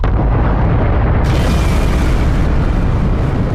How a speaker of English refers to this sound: At that point, we both would blow ourselves to smithereens in a gigantic nuclear explosion.